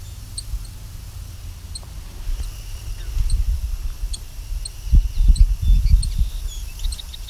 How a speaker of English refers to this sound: No, that's actually a song sparrow. This is a different call than I thought.